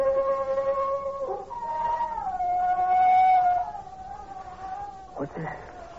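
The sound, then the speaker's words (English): A long, wavering wolf-like howl with sliding pitch, several overlapping tones sustained for a few seconds, fairly loud and clear, ending in a short rising cry. “Sound like a wolf coming.”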